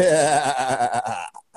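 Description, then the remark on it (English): A goat bleats once in a long, loud, quavering cry lasting over a second, then a brief faint bleat follows before it goes quiet. “Dude, there's nothing funnier than a fucking goat going for it.”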